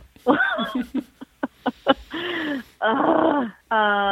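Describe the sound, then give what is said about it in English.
An angry bulldog on a sofa growls and grumbles in a string of throaty bursts with short snorts between them, fairly loud, ending in a long, drawn-out, higher-pitched growl. “There's one where it looks like it's angry on a sofa.”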